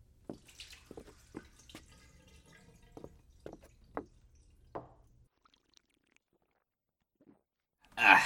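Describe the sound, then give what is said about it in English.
Water poured into a glass, heard as a run of irregular splashes and drips for about five seconds, then quiet, ending with a brief louder burst of sound. “Sorry not to interrupt, but can I have a glass of water?”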